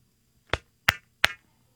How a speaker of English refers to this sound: I agree with that. That is a triple clap if ever there was one